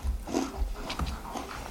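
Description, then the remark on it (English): A dog gnaws on a rawhide, with irregular wet chomping and crunching sounds and low grunting breaths, steady but fairly quiet throughout. “She is noshing on that rawhide.”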